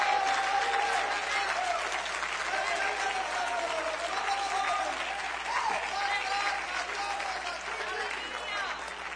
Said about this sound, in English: Oh, you ought to clap your hands unto the Lord. I said, it's going to be worth it all.